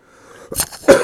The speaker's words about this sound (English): Sorry, I'm trying not to cough in everybody's ear.